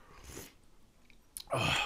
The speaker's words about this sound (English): take a sip of this real quick.